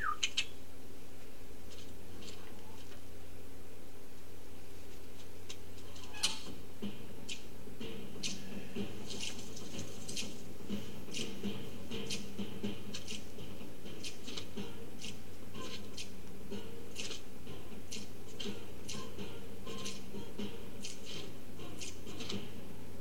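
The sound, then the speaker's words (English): A steady run of sharp clicks, roughly one or two per second, repeats for the whole stretch over a faint whistle-like tone, a trademark whistle made with a clicking sound. No one speaks. “What's this thing you do, the whistle with the clicking sound?”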